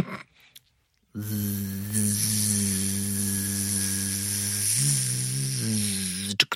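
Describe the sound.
A voice imitates a tattoo machine with a steady, low, droning buzz that holds for about five seconds, wavering briefly in pitch near the end, alongside a bright, hissy edge.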